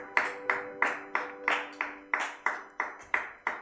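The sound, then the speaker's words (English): An audience claps together for Jesus after a testimony, in a steady, even rhythm, about eleven sharp claps in quick succession, over a sustained organ-like tone in the background. “Now, can we clap for Jesus for the testimony he has given us today?”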